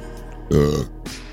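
A single loud, close burp lasting about half a second, low and throaty with a rumbling tone, followed by a brief faint sound and quiet.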